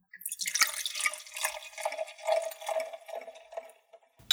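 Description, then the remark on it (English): Pink wine glugs and splashes into a glass in a steady, bubbling stream for about four seconds, with bright high gurgling tones that rise as the glass fills, then a soft clink at the end. “Now that I have pink wine in my glass and everybody is happy”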